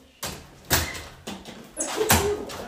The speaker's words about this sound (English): Okay, I locked the door.